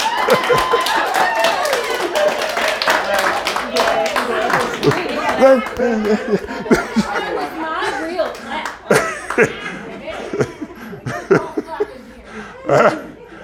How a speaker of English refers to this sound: Golf clap.